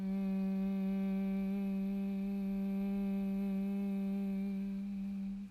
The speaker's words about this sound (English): For humming bee breath, you'll take a simple inhale. And make a loud humming sound on the exhale.